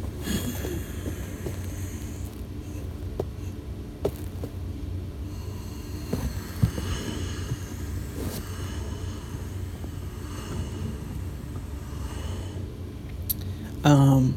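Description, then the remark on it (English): Slow, deep breathing as a breathing exercise: a long, airy inhale of about six seconds followed by an even longer, steady exhale of about ten seconds, with no talking over it. “And then one of them, those that I created, is where you breathe in for 6 seconds and then you breathe out for 10 seconds. Let's try that together.”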